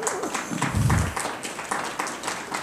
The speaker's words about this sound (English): Wow, man, I thought they only clapped when Zach preached. They're just glad you're done.